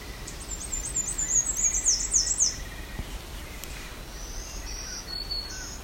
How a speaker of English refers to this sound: There we go. May be an American Red Start. Just one of the many songs. There wasn't too much extra thrown into that warble.